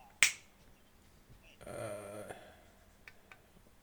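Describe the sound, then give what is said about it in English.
A single sharp, crisp finger snap rings out, followed after a pause by a brief, low, buzzing tonal sound before things fall quiet. “It was a snap, wasn't it?”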